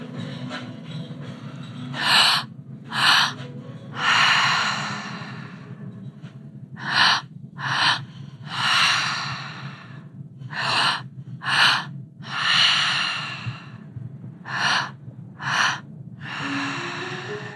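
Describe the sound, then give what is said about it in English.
Group breathwork with forceful, rhythmic breathing: loud, sharp breaths come in close bursts, some quick and some drawn out, over a steady low hum. No one speaks. “So breathing into our bodies, and allowing our energy to surface.”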